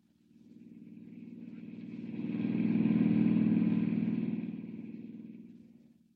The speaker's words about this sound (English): Hiring a car, Clark Kent heads out at once on the dusty road to San Miguel, 50 miles away.